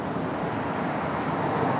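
Steady, broad roar of traffic on a busy main road by a fire station at about 10 o'clock, with cars rushing past in a continuous wash of engine and tyre noise, no voices.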